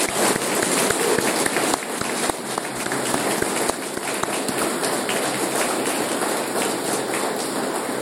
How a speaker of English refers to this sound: And I have to, from my personal perspective, I have to compliment the candidates. Every one of you have done an outstanding job to address the questions from the floor. I think we should give them a really good round of applause.